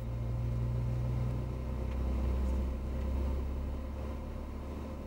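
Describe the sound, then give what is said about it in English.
A car engine drones steadily for several seconds, its frequencies enhanced or reduced on a computer to change the sound of the car, a deep low hum with a faint tonal whine, holding a fairly even level with slight swells and no voices. “On this computer screen, frequencies can be enhanced or reduced to change the sound of the car.”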